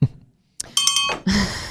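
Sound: bell sound effect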